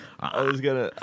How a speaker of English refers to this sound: I was going to feign burping, and then I yawned.